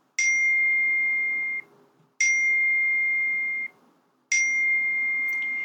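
A text message notification chime rings three times at steady two-second intervals, signalling incoming text messages from sisters, each a bright, clear ding that holds briefly before cutting off, fairly loud with no talking.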